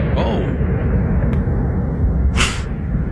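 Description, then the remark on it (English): Explosions go off during a street celebration by fans in Kansas City after a Super Bowl win, a steady low rumble of outdoor noise broken by a sharp crack and then a loud, bright blast near the end. “Evidently, fans in Kansas City have cruise missiles as well. That's actual tape of Kansas City after the win.”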